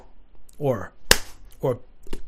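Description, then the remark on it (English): A single sharp, crisp slap of a hand against a mouth, made as a sound effect, loud and instant, set between short murmured vocal sounds before and after. “I slapped my mouth.”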